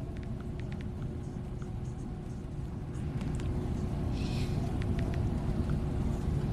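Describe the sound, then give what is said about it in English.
Race car engines run in a steady, deep rumble with a constant low hum, growing slightly louder halfway through, with no voices and no distinct revving, as the cars are lined back up for a five-to-go overtime finish. “We're going to have a 5 to go overtime. The engines are running.”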